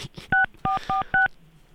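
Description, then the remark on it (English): Four quick telephone keypad tones beep in an uneven sequence as a number is dialed for an unannounced live call, each a steady two-note electronic chirp lasting a fraction of a second, with no talking over them. “Live call, unannounced. We'll see what happens.”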